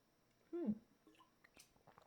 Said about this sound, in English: Drinking water for effect.